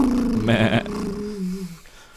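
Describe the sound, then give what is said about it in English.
A voice mimics a rumbling tractor engine while pretending to drive a tractor, with a low, gravelly growl that rises into a buzzing roar around half a second in, then trails off into a falling hum over about two seconds. “I'm pretending to drive a tractor.”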